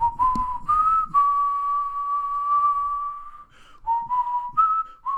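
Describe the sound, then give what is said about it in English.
A person whistles a simple tune, with a few short pitched notes, one long sustained tone held for a couple of seconds, then more stepping notes. No talking. “I'm not good at whistling.”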